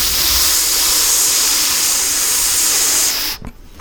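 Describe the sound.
A steady, loud breathy hiss made by voices imitating white noise, broad and even for about three seconds, then cutting off abruptly into quiet.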